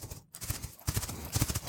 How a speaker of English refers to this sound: Galloping at breakneck speed, it came as a sharp surprise when the horse whinnied a loud protest, digging his hooves into the damp soil and rearing.